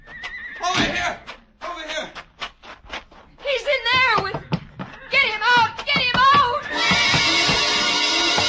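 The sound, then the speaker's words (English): A horse rears and screams in a stall, whinnying in shrill, wavering bursts, mixed with sharp knocks and thuds of its hooves clawing against the stall, ending in a sustained loud noisy roar; agitated. “The horse rearing, screaming, clawing its hooves against the stall.”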